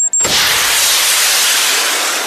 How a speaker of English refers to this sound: Just load one of the oversized military surplus bottle rockets. Hoist the bottle rocket launcher onto your shoulder. Yeah. Punch in the coordinates. Yeah. Southwest. And fire. Fire in the hole.